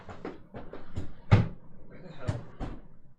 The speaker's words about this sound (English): opening and closing drawers and stuff.